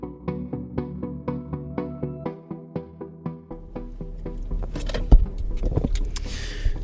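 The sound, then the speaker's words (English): Someone settles into a car at 4 a.m. in pitch darkness: a steady repeating chime, then the engine starting and rumbling, with a sharp thump and light jingling near the end. “It's 4 a.m. and I just got in the car”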